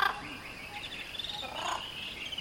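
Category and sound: bird, birds singing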